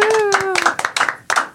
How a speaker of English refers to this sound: Let's give some applause.